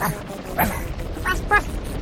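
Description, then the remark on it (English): A dog, Robo Cloco, barks three times in short, sharp yips at approaching creatures over a steady low rumble of background noise, the barks moderately loud. “Robo Cloco dropped back and barked as the creatures grew closer and closer.”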